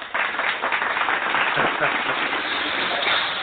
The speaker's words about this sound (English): let me go ahead and throw them claps in for you.